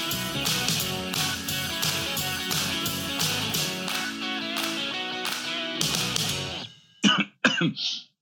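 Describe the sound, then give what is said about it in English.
Busy music plays for several seconds, then cuts out and someone lets out three or so harsh, hacking coughs in quick succession at the end. “So, yeah, as you can hear, I've got a bit of a cough.”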